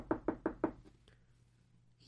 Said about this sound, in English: And suddenly there was a stranger that came to Tully's wife's door, knocked on the door.